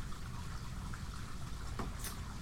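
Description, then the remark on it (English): Water drains steadily from a bathtub, heard faintly in a basement, a continuous muffled rush with low gurgling rumble, with no one talking. “We're in my basement, and my wife is clearly showering or something. Just let the water out of the bathtub, maybe?”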